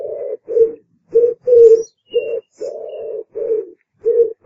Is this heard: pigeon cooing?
yes